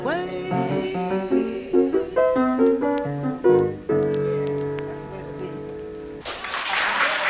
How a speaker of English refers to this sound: That crowd that you heard applauding was from a live date, live at the Overseas Press Club